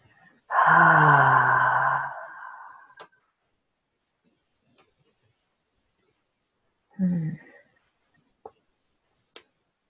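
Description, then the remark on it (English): A deep breath let out as a long, voiced sigh, followed by quiet and then a second, shorter sigh, with a couple of faint clicks near the end. “We're filling up enough that we're solid. And then we let go.”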